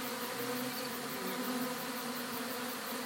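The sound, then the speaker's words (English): A steady, dense buzzing of many bees fills the scene, a continuous droning hum that stays even and unbroken throughout, moderately loud, with no voices. “Come back for you bees.”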